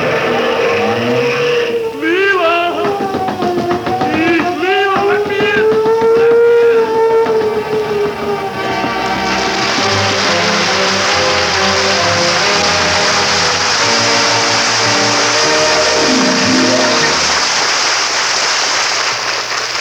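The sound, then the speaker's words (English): A car engine revs hard as tires squeal with rising, sweeping whines, then the vehicle roars off loudly into a broad rushing noise as it speeds away, intense throughout. “Into the car, everybody!”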